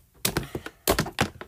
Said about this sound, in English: That's from me slapping the slime. Like, that's how thick it is.